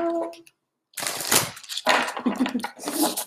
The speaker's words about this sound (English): Oracle cards. Let's see. Shuffle.